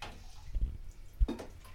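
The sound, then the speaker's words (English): Cold water poured from a ladle onto a leg splashes out in two short bursts, a soft pouring spatter followed by a brighter splash, fairly quiet with no talking. “I'm dumping it on my leg. I want to see how cold it is.”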